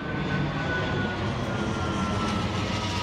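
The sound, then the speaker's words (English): A loud, steady roar of jet aircraft operating out of Van Nuys passing overhead a school, a dense rumbling wash of noise that holds constant throughout with no voices; four jets within nine minutes. “recorded the jets flying over her daughter's school one day.”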